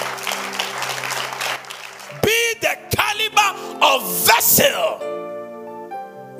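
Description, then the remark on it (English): An audience claps in a steady wash of applause, then voices break in with loud rising and falling whoops and shouts before held musical tones take over. “Let's clap for some.”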